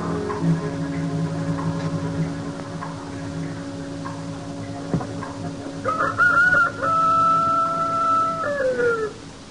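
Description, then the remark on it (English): A rooster crows loudly, a long drawn-out cock-a-doodle-doo rising and then trailing off, over a steady background hum with some faint clucking earlier. “Oh, what's he got to crow about?”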